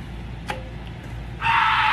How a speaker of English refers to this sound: Drivers out there late at night. Here's that scream.